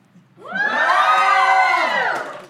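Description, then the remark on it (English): A live audience, asked to make some noise, erupts into loud cheering and shouting, a dense swell of many voices that rises quickly, holds for about two seconds, then begins to fade. “And would you, or and make some noise if you'd rather let your mom compete in the UFC.”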